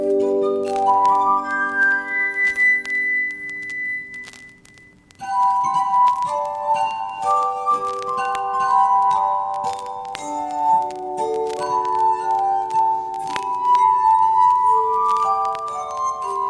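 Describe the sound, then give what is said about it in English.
A glass harmonica plays a slow, ringing melody of pure, sustained tones that overlap and shimmer, with a brief pause midway before the eerie, bell-like notes resume, clear with no talking. “Another young woman at the time, who'd become a prolific glass harmonica player, died at the age of 39 from the same symptoms.”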